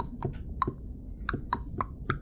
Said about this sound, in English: You kind of go over to the wall, maybe it's like the hinge of the door, and start tapping with your beak.